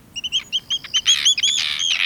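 Arctic tern calls: quick, sharp, high chirping notes, spaced at first and then crowding into a dense, overlapping chatter, fairly loud, with no voices.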